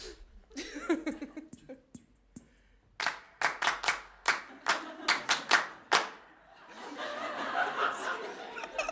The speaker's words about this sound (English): I've got a little something for you that I wanted to save, and maybe we could have a little clap or something.